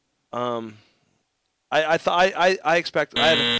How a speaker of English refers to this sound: So why are you buzzing me? Because you don't like what I have to say?